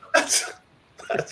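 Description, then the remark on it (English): Two sharp, loud coughs, the second following after a short pause, with no talking around them. “How does everybody have a cough right now?”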